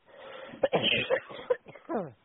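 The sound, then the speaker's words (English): A man clears his throat and coughs several times, a string of rough, raspy bursts ending in a short gravelly grunt. “I need a cough drop, man.”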